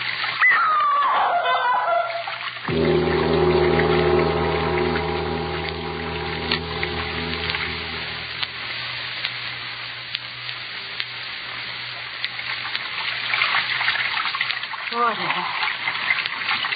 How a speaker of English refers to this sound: That sound. Running water. Over this way.